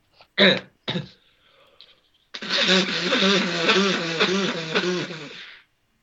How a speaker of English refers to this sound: Hold up a second. I'm just going to blow my nose so you can cut this bit, yeah?